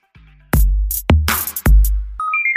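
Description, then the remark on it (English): A short notification chime, two clear rising tones at the very end, following three heavy booming hits that pound loudly in succession. No one speaks. “Here's a notification from the NoFo home office.”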